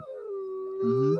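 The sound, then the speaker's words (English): A short, sustained wolf-like howl from human voices, a steady wavering tone with a second, lower voice joining near the end, fairly loud with no talking. “We're over here howling”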